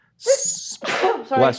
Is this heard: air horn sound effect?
no